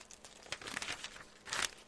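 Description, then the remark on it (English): Papers rustle and crinkle as someone leafs through a stack of papers just handed to them, looking for one sheet. A run of quick, dry shuffling bursts, with a louder crisp flurry near the end and no talking. “just handed me a stack of papers, so let me find it real quick.”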